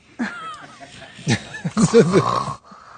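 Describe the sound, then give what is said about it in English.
Rough, throaty snoring from Honey Boo Boo, asleep during a TV interview, comes in three uneven bursts, the last one longest and loudest, with a grunting, almost piglike rasp between short pauses. “Those are some mean snores from Honey Boo Boo.”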